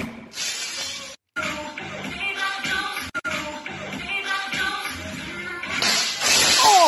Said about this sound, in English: That is her head smashing the light to smithereens.